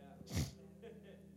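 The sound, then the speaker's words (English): A single sharp, wet nasal snort from a person with the sniffles bursts out loudly for a split second, followed by a couple of softer breathy sniffs over a low steady hum. “So y'all be the recipients of snorting, imagine, this morning.”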